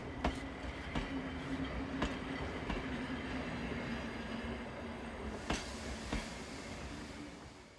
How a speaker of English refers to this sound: you can hear the whistle and the clatter of a ghost train that is passing through